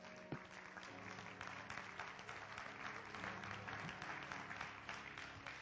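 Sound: audience clapping hands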